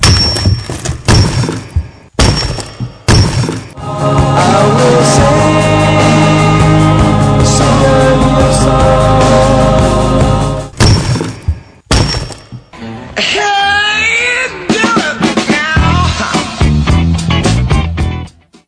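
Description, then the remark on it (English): A loud, dramatic rock-cracking effect: heavy thuds and sharp breaking crashes with a long, sustained rumbling, ringing stretch in the middle, then a scatter of smaller cracks and crumbles. No one speaks. “Once again, that was the sound of rock cracking, and maybe it's an echo of what's going to happen 1 year from this week.”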